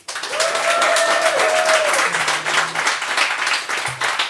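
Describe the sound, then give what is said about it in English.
A live audience in Phoenix breaks into loud, sustained applause to vote for one side of a contest, a dense wash of clapping hands that holds steady for several seconds, with a brief whistle-like tone rising over it early on. “So if you think Fanshawe and Anya and therefore Jack is in the right, applaud now.”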